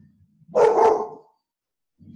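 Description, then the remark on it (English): A single loud dog bark, about half a second long, sharp and full, standing alone against a quiet background with only faint low rumbling before and after. “Dog wants some screens.”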